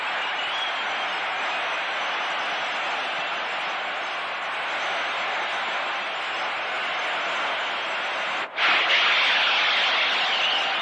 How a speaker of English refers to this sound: brings this crowd roaring to its feet with a home run to the screen in left center.